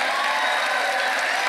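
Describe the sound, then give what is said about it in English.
A live audience applauds and cheers together, voting by applause that there is intelligent life in space, a dense, steady wash of clapping and voices that stays loud and even throughout without fading. “First off, how many of you people out there think there is life in space? Not the kind of pond scum you may find at home, but intelligent life. By applause.”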